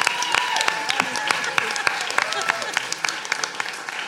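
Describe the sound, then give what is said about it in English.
A crowd applauds steadily for a guest introduced as a panto expert, dense overlapping claps at a fairly loud level, with a few voices faintly mixed in beneath the clapping. “Big round of applause for Panto expert”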